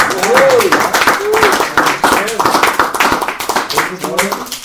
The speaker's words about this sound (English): By the way, I think you you all owe a round of applause to the man who just got a promotion.